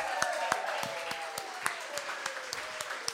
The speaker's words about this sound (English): So let's give a big round of applause